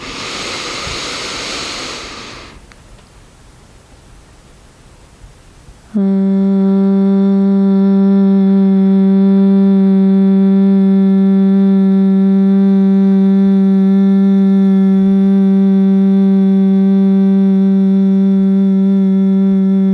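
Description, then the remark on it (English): A breathy inhale, then a long, steady, loud hum on one low pitch, rich and buzzing with vibration, sustained unbroken for about fourteen seconds as the breath goes out. “And now a final long inhale and exhale with vibration sound.”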